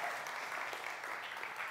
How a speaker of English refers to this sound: It's okay to clap for dads. We got a great sermon for dads today.